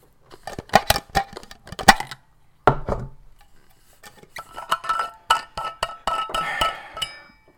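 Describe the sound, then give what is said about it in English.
A thermos of boiling water being opened with sharp clicks and clinks, a brief rushing burst, then a stretch of busy clattering and trickling as the boiling water is poured into a mate gourd, with no talking. “But whenever you're ready, you obviously spark up, and I'll open up the thermos of boiling water and put it in my mate.”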